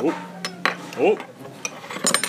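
Dishes and cutlery clatter in an IHOP restaurant: scattered sharp clinks and knocks come irregularly, clustering toward the end, with faint murmuring voices underneath.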